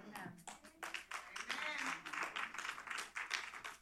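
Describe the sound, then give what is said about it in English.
Sparse, uneven hand clapping from a small group, quiet and half-hearted, with scattered claps trailing off and some faint voices murmuring underneath. “That was really a sad clap, but that's okay.”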